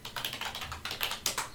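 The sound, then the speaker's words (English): Rapid, steady typing on a computer keyboard during a typing test, a quick run of crisp clicking keystrokes with no voices. “It's like you might be an adult who already knows how to type.”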